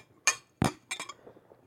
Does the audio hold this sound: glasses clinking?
yes